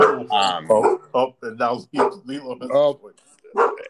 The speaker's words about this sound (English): Curtis Samuel, and there's Toby barking. Toby does not like Curtis Samuel, it sounds like.